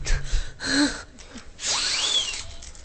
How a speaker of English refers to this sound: I really appreciated that percussive sneeze. Oh yeah, did that work out? That was perfect. I was panicking. I was like, No, that was like a crash. Yeah. It's like a crash at the perfect moment.